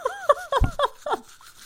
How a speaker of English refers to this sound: Okay. Let's brush our teeth. Okay.